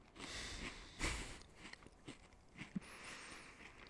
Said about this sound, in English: I'm sorry for my chewing, but I have to eat these cookies because I want to.